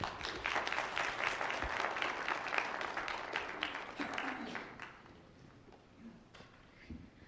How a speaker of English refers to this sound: Let's give Miss Melody another round of applause there.